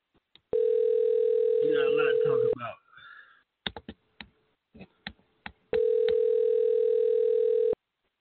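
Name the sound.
telephone ringing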